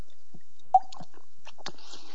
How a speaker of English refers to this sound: You know, what we're doing here is, hang on, I've got to get a sip of water.